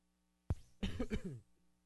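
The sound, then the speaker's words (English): A single sharp cough, followed by a short, rough throat-clearing sound, with quiet background before and after and no talking. “Excuse me if I cough in between. I try to mute that.”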